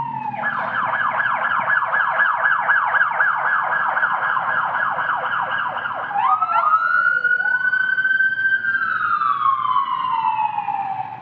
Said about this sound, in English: For those of you watching online, wondering why I'm pausing, I didn't have a stroke. There was a siren that went by.